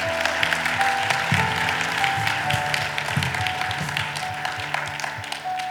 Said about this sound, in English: Come on, let's clap to the Lord.